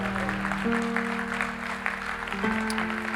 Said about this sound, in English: And so, church, actually, can we give a huge round of applause for all of the amazing moms in the room? We love you. Yes, we love you.